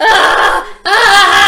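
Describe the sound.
A person imitates a blood-curdling scream: two loud, shrill, high-pitched shrieks with a brief break between them, no talking.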